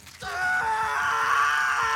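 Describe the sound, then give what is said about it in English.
In a dramatized myth, the god Dumuzid cries out in pain in a throne room as Gala demons sink their claws into him, a loud, sustained anguished yell that swells after a brief quiet start and holds steady with a strained, wavering pitch, no other talk. “As Dumuzid's cries echoed out of the throne room, his sister, Jeshtinana, goddess of vegetation, heard him shout.”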